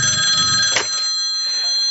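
A telephone rings with a bright, steady electronic trill that holds for over a second, then cuts off, leaving a brief quiet tail.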